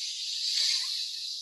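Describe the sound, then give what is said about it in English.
A steady, airy inhale through one nostril while the opposite nostril is held closed with a thumb during alternate-nostril breathing, a soft continuous hiss lasting about a second and a half that swells slightly in the middle, with no talking. “And then I'm breathing in through the other one.”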